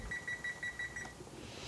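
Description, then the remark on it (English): A kitchen timer, being set for 8 minutes while pasta cooks, gives a quick string of about six short, high electronic beeps in an even rhythm, followed by a faint background hum. “All right, so now I'm going to set my timer for 8 minutes.”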